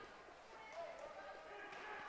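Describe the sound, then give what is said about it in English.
A player's hand slaps a basketball with a couple of quick, sharp smacks before inbounding it, 41 seconds into the second quarter of a game involving Overton, fairly faint against a steady wash of gym crowd noise and voices. “Slapping the basketball to inbound it.”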